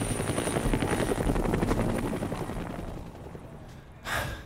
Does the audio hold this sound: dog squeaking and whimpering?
no